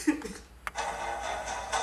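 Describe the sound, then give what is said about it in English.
A disc ejecting from a console: a sharp mechanical click, then a steady, moderately loud whirring hum that keeps running for about a second. No one speaks. “Yeah, it's really just the disc coming out.”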